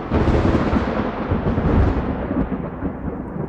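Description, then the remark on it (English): A loud, sustained rumble of thunder rolls across the sky without a break, heavy and booming in the low end, with a hiss of rain pelting the windows mixed in, fading slightly toward the end. “As if on cue, there was a loud crack of thunder rolling across the sky, and rain began to pelt the windows wildly.”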